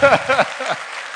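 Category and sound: crowd, applause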